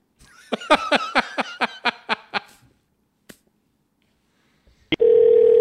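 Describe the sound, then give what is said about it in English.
A run of rhythmic chuckling bursts fades out, then after a click and a brief pause a loud, steady telephone tone comes on as a second phone number is dialed, holding to the end. “Not too proud to double dial people if I've got two phone numbers and I don't call him that fucking often.”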